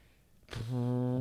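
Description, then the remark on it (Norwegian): A single loud fart with a brief breathy onset, then a steady low buzzing tone that holds for under a second before stopping abruptly. No one speaks. “Nå skrøyte du av meg, og så prompet du etterpå.”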